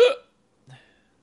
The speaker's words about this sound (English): And I have the hiccups.